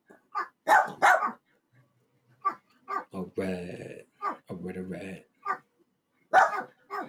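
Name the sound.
dog barking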